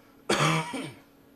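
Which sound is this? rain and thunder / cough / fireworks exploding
cough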